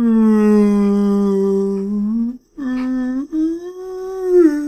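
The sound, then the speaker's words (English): A person imitates a whale song with loud, drawn-out humming moans that slide slowly up and down in pitch, broken into three long phrases by short pauses. “sing me a whale song.”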